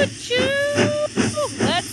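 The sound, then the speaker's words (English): A train approaching: a long, steady whistle-like tone, then shorter hoots that bend in pitch, punctuated by bursts of hissing like steam, all fairly loud. “Hear that train coming?”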